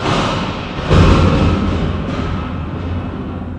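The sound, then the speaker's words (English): A vuvuzela, used in place of a buzzer, blares in a single long, rough, buzzing blast that swells in loudly about a second in and holds steady, slightly wavering, until the end, with no voices. “But we do have the vuvuzela. We have the vuvuzela. You're playing it wrong.”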